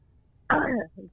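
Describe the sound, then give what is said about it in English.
A woman gives a single short, voiced cough, fairly loud, followed a moment later by a faint, brief throaty sound. No one speaks. “She coughed and she heard me the first time I asked the question too.”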